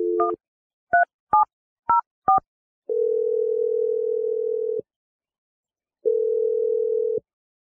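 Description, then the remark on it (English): Four short two-tone keypad beeps dial a phone number after a brief steady tone, followed by a long continuous dial tone and then another shorter stretch of ringing tone, clear with no voices. “I'm going to dial the phone number if you're ready and let you make your Awkward Tuesday phone call.”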